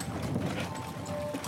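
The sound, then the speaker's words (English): Horse hooves clip-clop steadily on a hard surface amid a dense, rumbling outdoor background, with no voices. “Oh, you mean the horse? I saw you talking to her.”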